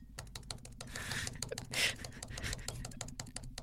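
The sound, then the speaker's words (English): Rapid, loud clacking of computer keys in a steady stream of sharp clicks, with a brief burst of heavier noise midway through and no one speaking. “I like that strong man, loud keys.”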